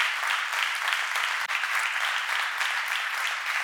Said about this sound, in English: As a matter of fact, and I appreciate that clap, but I want us to take it to the next level.